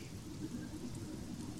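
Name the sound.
rain falling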